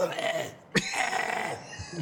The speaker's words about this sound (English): I'm gonna cough it out.